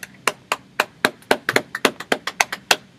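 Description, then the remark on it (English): A quick run of sharp hand claps, about fourteen in three seconds, slightly uneven in rhythm, each crisp and bright with no talking over them. “I applaud your number one.”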